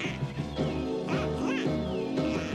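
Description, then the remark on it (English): A duck at a pond quacks repeatedly in a rapid, raspy run of loud, nasal calls, with no one talking over it. “So they visit the pond where there's a duck who's laid 6 eggs.”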